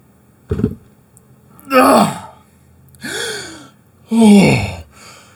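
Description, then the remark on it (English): A short thud, then three loud, ragged gasping breaths about a second apart, each a strained, rising intake of air, with no talking. “Oh, thank God he's breathing.”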